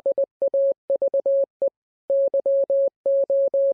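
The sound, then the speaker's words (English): A steady single-pitch beep keys on and off in short dots and longer dashes, forming clear Morse code characters that spell the phrase "have you come here to torture us before the appointed time?", with brief pauses between letters and words, heard alone with no talking. “Learning Morse code today. Today's phrase is, have you come here to torture us before the appointed time?”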